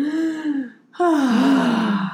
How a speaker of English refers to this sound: So shallow breathing, which I also like to call chest breathing, is super common in today's society.